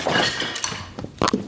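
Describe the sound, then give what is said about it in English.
An actual chair with nails in it is smashed over a body while filming a video: loud cracking, splintering impacts with a few sharp crashes and clattering debris, including a heavy double hit near the end. No voices. “trying to film like me breaking that chair over your body”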